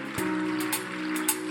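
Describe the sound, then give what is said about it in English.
An audience at a morning church service claps for the Lord in a dense, steady patter, with a few sharper accents standing out, over a sustained low musical drone. No one is speaking. “Put your hands together this morning. Oh, clap for the Lord this morning.”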